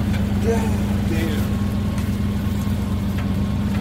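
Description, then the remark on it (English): A heavy tow truck engine runs steadily while winching, a loud, constant low rumble with a droning hum, while faint voices murmur briefly over it. “It looks like the tow truck.”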